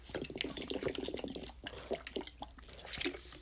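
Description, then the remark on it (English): Wet gulping and swallowing sounds as someone opens a water bottle and guzzles the water, in a quick irregular rhythm, with sloshing water and a sharp little click near the end, like a bottle cap. No one speaks. “When you talk too much and you're like, oh, there's my water. Let's open it. Let's not spill it all over. Am I going to guzzle in front of them?”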